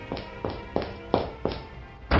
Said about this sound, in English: will you please stop pounding on my door?